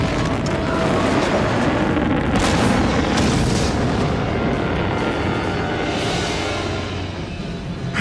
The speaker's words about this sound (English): But Hondo has a guy with a bazooka, or the Star Wars equivalent of one, and they're about to unleash it against Maul's freighter.